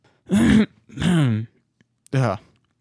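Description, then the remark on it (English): Three loud, throaty coughing bursts with a short pause between each, the last one preceded by a quick catch of breath; no talking. “Got the hiccups and a cough at the same time.”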